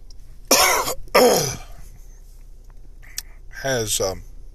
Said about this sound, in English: And I have just a little bit of a cough that after eating breakfast.